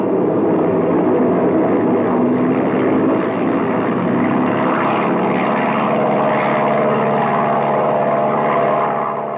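A propeller airplane engine with a hole in one wing drones steadily and loudly throughout, a dense, rumbling buzz with a faint tonal hum riding on top and no breaks or voices.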